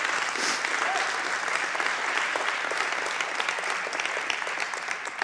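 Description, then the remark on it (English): An audience applauding: dense, sustained clapping from many hands fills the whole stretch at a steady, fairly loud level before easing slightly at the end. “You need to clap for that.”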